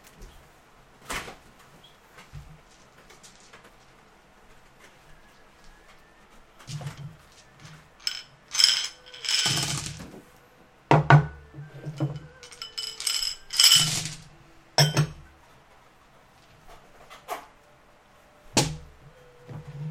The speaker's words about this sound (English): Which dice bag do you want the die in? The red one over here? Yeah, the red one over here.